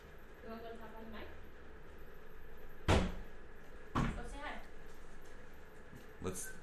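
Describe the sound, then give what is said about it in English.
Three loud, sharp thuds of someone banging on a door, irregularly spaced a second or two apart, with voices murmuring in the background. “Let's kind of refrain from hitting the door that like that.”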